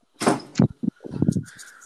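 A nearby door is opened, with a brief rushing slide followed by a few solid knocks and rattles, then a faint high squeak as it settles. No one speaks.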